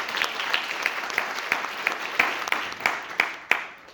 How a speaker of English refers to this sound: But just let me, let's give a round of applause to our four panelists.